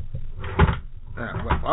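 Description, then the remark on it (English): A panty drawer in a bedroom slides open in two scraping, rumbling pulls, with a soft voice murmuring underneath. “Looks like we found Tafisha's panty drawer here.”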